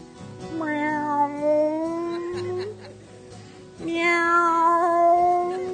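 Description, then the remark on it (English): Two long, drawn-out meows, fairly loud, separated by a short pause, each rising and holding steady. They sound like a person's voice imitating a cat rather than a real animal. “And this time, instead of the little kitty rubbing his ankles, this little lion was rubbing next to his waist. Meow. Meow.”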